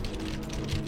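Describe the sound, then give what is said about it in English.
Rapid computer keyboard typing, a quick run of clicky keystrokes in an irregular rhythm, moderately loud over a low background hum, with no one speaking. “Did you just give me a keyboard soundbite?”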